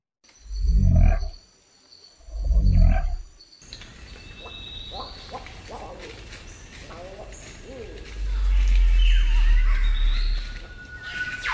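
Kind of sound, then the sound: bird, cassowary call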